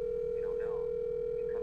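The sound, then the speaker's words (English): A steady electronic phone ringing tone of an outgoing call hums continuously through the whole moment, fairly clear, with faint voices murmuring underneath. “Hey, actually, we're going to try to give him a call here and give you guys an exclusive.”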